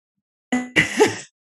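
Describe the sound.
A voice mimics snoring: a short buzzy, nasal rumble followed by a longer, breathy rasping snort, fairly loud, then silence.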